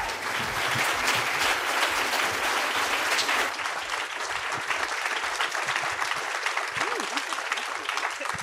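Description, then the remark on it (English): A very enthusiastic live audience at the Toronto Public Library's Appel Salon applauds steadily, a dense wash of clapping hands, with faint voices and scattered cheers mixed in throughout. “It was recorded at the Toronto Public Library's Appel Salon in front of a very enthusiastic crowd.”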